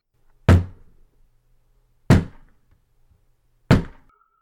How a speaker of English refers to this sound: But before he can do that, there's a knock at the door. It's a very loud and slow.